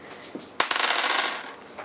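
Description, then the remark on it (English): Three dice clatter across a hard table during a tabletop game in a quick burst of rattling clicks that tumble and settle over about a second, with no talking. “So I'll roll 5 dice? No, 3 dice, add 2 to the roll.”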